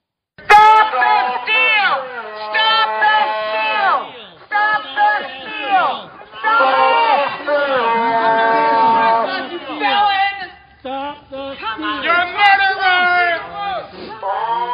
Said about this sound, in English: People shouting murderer.